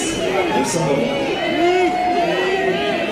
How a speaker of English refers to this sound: You can hear the clicks of the cameras, the shouts from the fans as they swarm to take a picture of the Hollywood star.